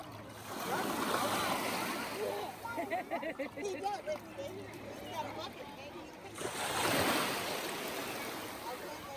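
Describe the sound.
Ocean waves surge in two broad, hissing washes, one at the start and one near the end, with a voice murmuring faintly over the quieter stretch between them.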